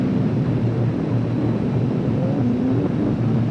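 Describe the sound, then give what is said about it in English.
A train rolls past with a steady, heavy low rumble and a droning hum that holds at an even loudness throughout, with no voices. “Should I just be quiet and listen to the train pass by?”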